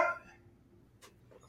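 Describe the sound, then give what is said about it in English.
A dog pestering another pet lets out one short bark right at the start, then things go quiet apart from low background rumble and a brief sharp noise a moment later. “So she's talking. That's Riley. She's pestering Riley.”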